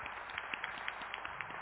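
A crowd applauds, many overlapping claps forming a steady, dense patter at moderate loudness, with no voices over it.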